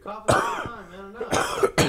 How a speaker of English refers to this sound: I need to clear my throat.